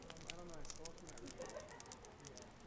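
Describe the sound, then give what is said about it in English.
A big bonfire on a beach crackles steadily with frequent sharp pops and snaps, continuous, while muffled voices murmur underneath. “I'm sitting in front of a big fire on the beach, listening to the flames crackle and the waves crashing.”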